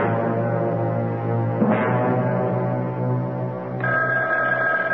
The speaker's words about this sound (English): Oh, my goodness. That telephone never seems to stop ringing. Ever since the boys were in that plane accident, people have been calling to talk.